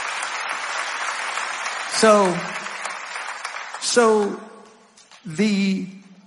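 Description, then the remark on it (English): An audience claps steadily for several seconds, a dense wash of hand claps, while voices call out loudly three times over it; the applause thins toward the end. “If you're happy about that, can we put our hands together and just clap?”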